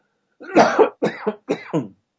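A burst of three harsh coughs in quick succession, the first louder and longer, followed by two shorter hacking coughs, with no talking.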